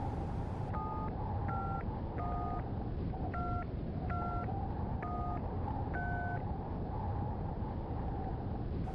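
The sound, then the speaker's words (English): A phone number is punched in as a run of seven short touch-tone beeps, each a bright dual-pitched tone, steady and evenly spaced, over a constant low rumbling background hum. “Let me make a call.”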